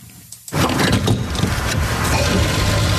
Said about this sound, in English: And there's the sound of the gas pump working.